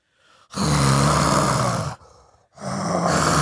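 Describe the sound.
A voice imitates loud snoring heard through a wall, loud enough to shake the whole house: two long, rasping, throaty snores with a brief quieter breath between them, harsh and rumbling, with no words spoken.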